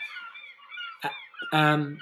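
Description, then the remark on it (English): Seagulls cry out in a short burst of harsh, nasal squawks, the last call the loudest and most drawn-out, with no talking over them, from a track accidentally played. “Why can I hear seagulls? Because I just accidentally pressed play.”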